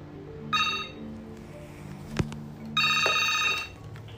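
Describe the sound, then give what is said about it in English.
A mobile phone rings in two bright electronic bursts separated by a pause, with a short click between them over a low background hum. No one speaks. “Oh, yeah, I forgot about him and my phone too.”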